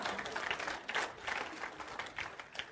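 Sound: audience clapping hands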